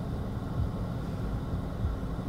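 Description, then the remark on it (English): A heavy truck rumbles past very close to a car, a steady deep low-pitched roar of engine and road noise that fills the whole stretch with no voices. “Sorry, I had to stop because, like, a truck was going by me and I was like, this dude's gonna hit my car.”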